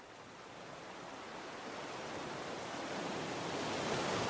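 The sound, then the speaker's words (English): Soft, steady wash of ocean tide waves, a broad, quiet, regular hiss of water that slowly swells in loudness, with no voices. “Watch the light on the rippling of the water, and let the quiet, regular sound of the tide rock you sleep.”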